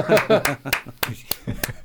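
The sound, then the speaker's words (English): Several sharp single hand claps, about five, land at uneven intervals over a couple of seconds, while a voice murmurs and chuckles underneath. “I do singles, single claps.”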